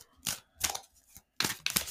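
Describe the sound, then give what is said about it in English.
A deck of cards being shuffled, four quick crisp papery bursts with short pauses between them, and no one speaking. “I'm shuffling right now the cards.”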